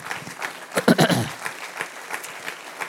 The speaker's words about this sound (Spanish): Denle un aplauso al Señor porque esto es fuerte.